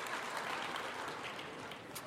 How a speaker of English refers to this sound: Give yourself a little golf clap.